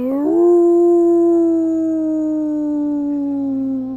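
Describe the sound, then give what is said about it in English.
A large creature on a town's center fountain lifts its head and howls toward the moon: a single long, sustained howl rises sharply then holds a steady, slowly falling tone for several seconds, loud, with no talking. “A large creature of some sort leaps up onto the center fountain of Bledsun and lifts its head and howls toward the moon.”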